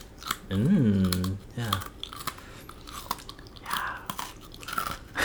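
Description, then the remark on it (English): Crunchy chewing of a crisp cookie, with repeated sharp bites and crackles over a few seconds, plus a brief hummed or voiced sound near the start. “Although, anyways, I will eat the cookie. Cool. Maybe not on the podcast. No, like, give them a little crunchy munch.”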